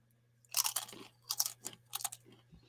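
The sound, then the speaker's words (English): Someone chews horseradish, eaten as the maror representing bitterness after a blessing, in a few bursts of wet, crackling bites, with brief pauses between them and a low steady hum underneath. “concerning the eating of the morar. Okay? So then you, which is the horseradish, which represents all the bitterness.”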